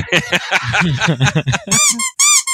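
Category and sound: household object, rubber duck squeaking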